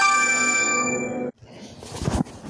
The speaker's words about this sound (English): y'all heard the phone ringing.